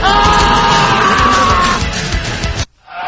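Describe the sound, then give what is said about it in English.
A man, Nicolas Cage in a played film clip, screams loudly and hoarsely for over two seconds, his voice strained and ragged, then cuts off abruptly before a brief, quieter cry follows. “I should just isolate the Nicolas Cage scream.”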